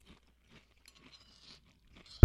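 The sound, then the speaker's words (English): Crunchy cereal flakes from a bowl being chewed, with faint, irregular crackly crunches followed by one sudden, much louder crunch right at the end. No one speaks. “I had a bite. I don't want to finish the rest of my bowl.”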